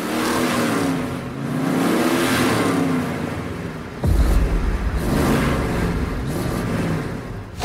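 car engine revving

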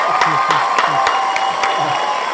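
crowd cheering and applause

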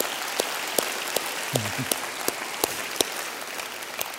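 audience applauding

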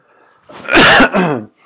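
cough

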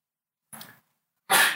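sneeze

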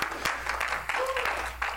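audience applauding

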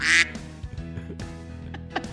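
duck quacking

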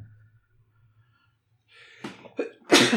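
sneeze

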